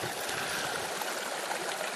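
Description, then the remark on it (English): A steady rush of running water from a mountain creek in a valley in the Colorado mountains on a summer day, bright and hissing with a continuous babbling texture and no pauses, heard alone without any voices. “It's always nice to find running water. That's where we are right now.”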